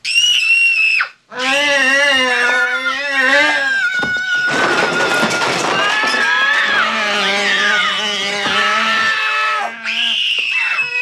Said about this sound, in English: And then meanwhile, while he's trying to do it, Gertie walks in, and then E.T. and Gertie see each other, and they both scream.